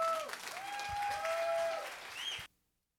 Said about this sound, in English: Put your hands together and give Rob a big round of applause, guys.